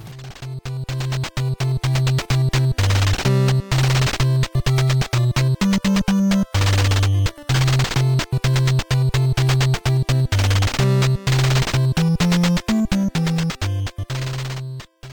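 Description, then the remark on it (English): The ending theme from the video game Bad Dudes, titled Ending: a bright, continuous chiptune-style tune with a steady, stepping bass line and busy upper melody, played loud and without any voices for about fifteen seconds. “This last track I want to bring to you from Bad Dudes is the one from the end of the game, aptly titled Ending.”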